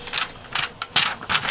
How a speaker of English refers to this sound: Well, I did the quiz, and you hear these pages turning.